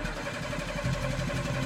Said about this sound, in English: She thrust the key into the ignition. The truck wouldn't start. She tried again and again.